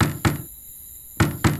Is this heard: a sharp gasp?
no